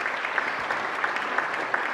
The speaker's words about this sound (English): Absolutely. For those who don't know why we're clapping,